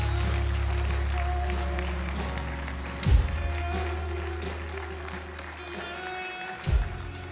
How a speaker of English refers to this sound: Clap your hands all over the house.